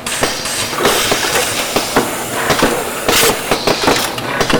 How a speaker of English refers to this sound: Machinery fills and seals a long line of tall, slender cans made and sold by the flower shop AZ. The ingredients are flavored water, some of the psychoactive chemical THC, and an injection of carbon dioxide.